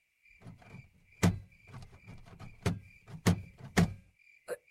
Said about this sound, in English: The door is stuck. Aren't you the smart one? Of course the door is stuck. I already tried that.